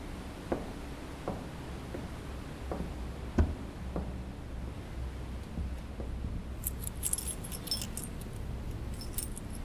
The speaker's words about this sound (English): There's a few keys still left. I'm taking them all. One's bound to work.